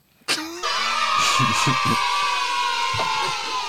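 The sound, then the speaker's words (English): A crowd of children at a pre-recorded show before a live studio audience bursts into loud cheering all at once. It is a sustained, noisy roar of voices, with a few sharper yells rising above it. “These are real kids in the background cheering for us.”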